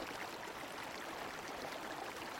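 Quiet, steady outdoor ambience beside one of the smaller ponds of the Penn Ponds in a park, its water sparkly, a soft continuous wash of airy, watery noise with no voices and no distinct events standing out.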